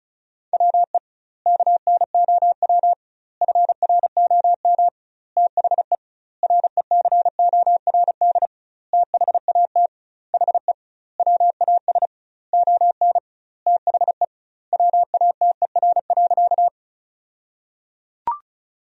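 Rapid Morse code at about 35 words per minute, sending sentences made from the top 500 words with double word spacing: a single steady mid-pitched tone keyed in quick dots and dashes, grouped into words by short pauses, then a brief click at the end.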